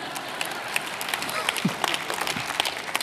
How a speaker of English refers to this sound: thank you, Mom, for clapping.